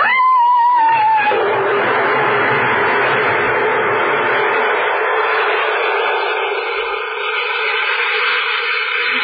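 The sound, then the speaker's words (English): A voice imitates a ghostly scream: a brief high wavering tone slides downward, then gives way to a long, loud, harsh wail that holds steady for about eight seconds. “And then I scream like this.”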